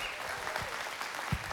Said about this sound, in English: And if you will, give a round of applause and welcome our Groves Campus pastor